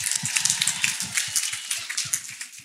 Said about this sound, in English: Round of applause